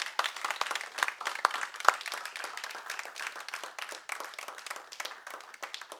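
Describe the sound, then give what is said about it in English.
A crowd applauds the people who helped out at an event the day before, a dense patter of many hands clapping at once that holds a fairly even level throughout, with no voices standing out. “All right, clap for these people.”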